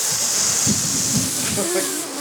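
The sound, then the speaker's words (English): A voice imitates a misting sprayer with a steady, bright hiss that runs unbroken for about two seconds, like a fine jet of spray, with faint breathy bumps and a slight whistle-like tone near the end. “They usually have blasting out just wet.”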